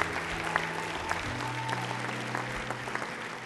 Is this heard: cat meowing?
no